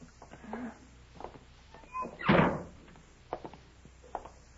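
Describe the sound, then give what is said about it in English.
A side door creaks briefly, then lands with one heavy thud midway through, followed by a few faint clicks and knocks in an otherwise quiet space. “Let's try that side door.”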